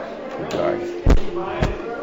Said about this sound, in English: It was over off on the side of the room. That was an old table. And that was an old table, very large, and it was just turning. You can hear it creaking.